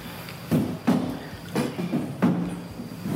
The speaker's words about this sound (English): I am gonna move the chair back, though, to the wall.